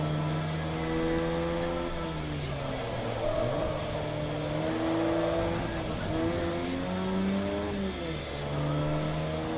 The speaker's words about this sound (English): You need a good, strong, torquey, heavy car on this track.